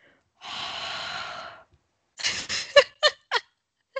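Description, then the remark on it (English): A voice imitates a long, hot, breathy exhale, like people collectively breathing on a document to supply heat, followed by several short, sharp huffs of breath in quick succession, fairly loud with no talking. “And to put the icing on the cake, your favorite part of this, where they are collectively breathing on the document to supply the heat. Would you like to do the sound effect again?”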